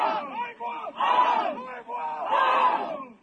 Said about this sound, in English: Dozens of people shout in the Haida language as they heave together, carrying the canoe to the water.